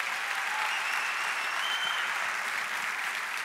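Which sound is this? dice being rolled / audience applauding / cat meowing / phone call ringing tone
audience applauding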